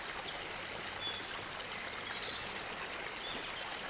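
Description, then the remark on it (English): A steady, continuous rush of flowing stream water fills the scene, even and unbroken throughout, with a faint bird chirp or two in the background and no voices. “Listen to the peaceful water and let your imagination fill the forest with whatever you would like to see there.”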